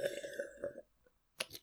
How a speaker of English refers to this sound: stop slurping. I will take those sounds and misuse them.